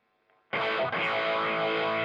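A loud, distorted electric guitar chord rings out after a brief quiet moment, sustained with a slow, sweeping phaser shimmer moving through its bright tone; the phaser, set to a low rate, is used to recreate a guitarist's early-album sound.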